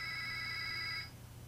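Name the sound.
phone alarm going off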